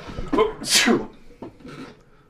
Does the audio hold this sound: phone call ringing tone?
no